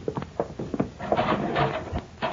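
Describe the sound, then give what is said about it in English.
A heavy metal cell block door clanks and rattles open, a series of sharp knocks followed by a grinding, scraping slide, loud, with no voices. “Now, there's the cell block door.”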